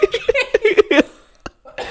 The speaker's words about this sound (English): Okay, anyway. This coughing is out of control.